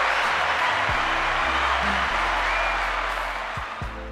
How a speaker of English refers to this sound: Let me get some round of applause here.